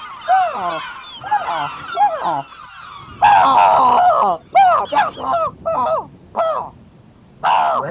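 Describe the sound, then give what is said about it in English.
A seagull squawks again and again, loud, in a string of harsh, rising-and-falling cries separated by brief gaps, with the later calls coming in quicker, choppier bursts. “I am Seagull! What is wrong with him? Take that, bird.”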